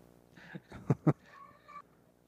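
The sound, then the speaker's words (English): A cat named Mimi yowls loudly in drawn-out, wavering cries, broken by two sharp, harsh bursts near the middle before trailing off in a higher whine. No one speaks. “Are you choking a cat or something?”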